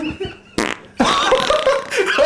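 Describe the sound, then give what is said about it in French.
A loud fart: a brief sputtering burst, a short pause, then a long, drawn-out rasp that wavers in pitch for over a second, with no talking over it. “Oh, il y a rien de péter en moi.”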